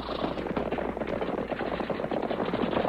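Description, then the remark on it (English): A rapid volley of gunshots as guns are fired to unload them while a stagecoach approaches, crackling continuously for about three seconds, dense overlapping bangs at a steady loud level with no voices. “I'm going to unload my guns.”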